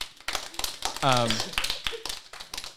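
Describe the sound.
An audience applauds with a dense, steady patter of claps lasting the whole moment, and a single voice briefly calls out over the clapping partway through.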